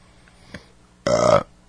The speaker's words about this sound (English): I do bad things into the microphone, like burping and shit like that. It's another bad habit.